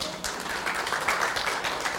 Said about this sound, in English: Let's give the Lord a hand clap praise.